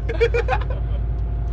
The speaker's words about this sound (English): All right, well, it's been a rowdy, rowdy time here in the back of the bus.